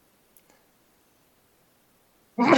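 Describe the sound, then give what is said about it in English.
Near silence with a couple of faint clicks, then a sudden loud sneeze bursts out right at the end, cut off abruptly. “So I'm going to sneeze.”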